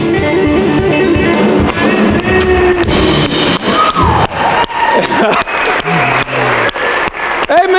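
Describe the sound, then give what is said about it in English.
An audience claps for God, loudly and continuously, a dense wash of applause with scattered cheers and whoops rising above it, sustained at full volume throughout without any pause. “So we clap for you, God, because you are a hunk of burning love.”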